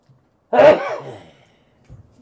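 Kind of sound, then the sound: human body sound, sneeze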